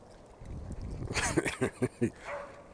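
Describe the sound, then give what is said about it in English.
A dog barks in a quick burst of four or five sharp, moderately loud barks, preceded by a low rumble of background noise and trailing off into a faint whine. “But this Deshaun, well, shut up, dude. Just barking.”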